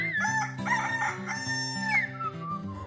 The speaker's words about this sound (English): Birdie is making friends with a rooster.